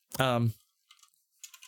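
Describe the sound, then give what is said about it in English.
A brief voiced sound from a person, then two quick clusters of computer keyboard typing: light clicking keystrokes separated by a short pause. “Typing is hard.”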